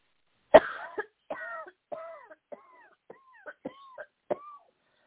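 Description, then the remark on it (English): A woman coughs hard several times in a row during a deliverance prayer, starting with one loud, raspy burst and then a string of shorter, strained, gagging coughs at a quick, uneven rhythm. “Cough that thing up.”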